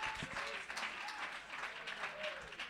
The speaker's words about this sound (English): Oh, somebody clap your hands and give him praise. Come on, let's worship him.